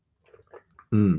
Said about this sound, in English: hang on, I'll just sip the coffee.